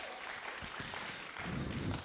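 A crowd claps together in a dense, steady patter of applause that swells somewhat louder partway through and keeps going to the end, with no voices standing out.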